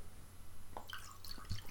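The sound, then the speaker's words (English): Wine trickles quietly into a glass: a short run of soft drips and little gurgling splashes over a low background hum, with no one speaking. “I'm pouring a glass of wine in celebration.”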